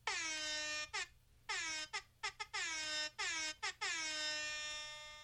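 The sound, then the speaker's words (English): A loud air horn blares in a rapid series of blasts, some long and sustained, others short staccato bursts, with a bright, brassy tone and no one speaking. “Do I love the air horn? You love the air horn.”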